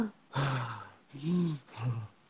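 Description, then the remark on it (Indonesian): A person imitates the very loud, heavy breathing heard from within the forest while resting on a hiking trail, thought to be a wild boar: three loud, rasping huffs with a low, growly voiced edge, each about half a second long and separated by short pauses. “Gue gak dengerin nih ada yang napas gede banget kayak.”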